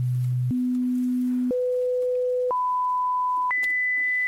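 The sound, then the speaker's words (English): A sequence of five steady pure tones, each stepping higher in pitch than the last, about a second apart, like a hearing test running from a low hum up to a thin high beep. “When you hear a sound, raise your hand.”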